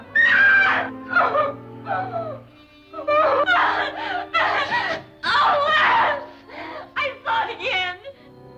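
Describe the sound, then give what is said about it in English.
A young woman screams and wails in a film scene, in a series of loud, anguished bursts with brief breaks between them, over a steady low hum in the background. “So there's a couple of scenes in this where she's just screaming, and I think this is one of them.”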